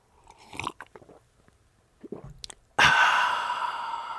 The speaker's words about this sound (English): So, okay, one more coffee sip. You ready?